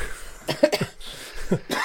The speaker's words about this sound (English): Excuse me. Excuse me as well. We've all had colds on top of colds that we were recovering from. Actually, I'll probably be coughing a lot less this time than it was last time.